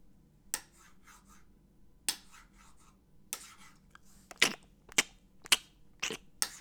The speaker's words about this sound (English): Like, you, I don't know if you could hear what I'm doing, but you would just hear like the fork and knife cutting shit and then just chewing.